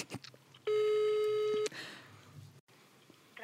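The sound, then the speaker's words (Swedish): A single loud, steady telephone ringing tone plays for about a second while a call to the Dramaten theatre connects, followed by faint background noise and a brief dropout. “Nu ringer jag Dramaten så får du se hur det blir.”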